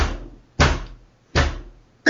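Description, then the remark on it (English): Heavy bashing thumps strike the western wall about four times in a steady rhythm, shaking the mortar, each loud, deep impact ringing out briefly before the next blow lands. “You guys hear a bashing sound. A thump against the western wall.”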